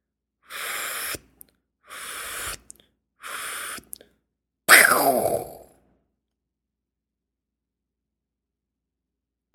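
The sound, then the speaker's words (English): A balloon popping: three breathy puffs of air, like the balloon being blown up, followed by one loud, sharp pop with a brief fading tail, then silence. “It is a balloon popping.”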